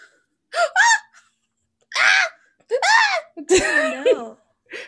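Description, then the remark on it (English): A series of sharp, voiced gasps, five or so in quick succession with short pauses between, loud, with no talking. “Don't tell me they fart, too. Oh. Gasp.”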